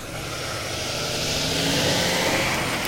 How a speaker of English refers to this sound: Sorry, that was a big truck that just rolled through